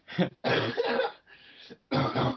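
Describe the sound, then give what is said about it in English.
A fit of harsh coughing, with several rough bursts in quick succession and a quieter, raspy pause in the middle before another loud hack. “So just to let you know, I may have massive coughing.”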